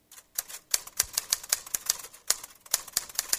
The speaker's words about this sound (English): Okay, yeah, typewriters. Yeah, very good. That one's easier.